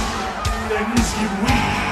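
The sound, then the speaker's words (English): A dense, steady roar of a WWF wrestling arena crowd in Montreal, during the Montreal Screwjob match, cheering and yelling, with sharp bursts of noise surging through it about every half second. “This crowd is living.”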